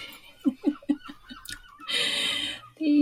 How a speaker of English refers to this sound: Oh, I think that's quite nice, actually. Yeah, they're okay, not bothering me. Not doing me any harm. Hopefully it's okay with the listeners that we've got some seagulls having it off in the background. It sets the tone.